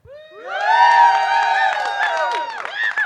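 A live audience erupts in loud, sustained cheering and whooping to vote for a cursed age-regression 28 Days Later mashup, high shouting voices layered together, swelling quickly and holding strong for about three seconds with scattered claps.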